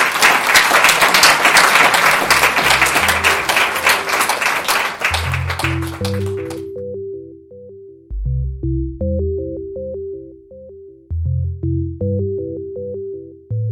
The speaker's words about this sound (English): One more round of applause, please. Oh, thank you.